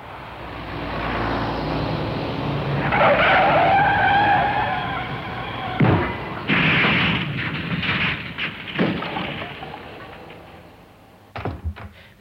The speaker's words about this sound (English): has just driven straight into a cattle truck.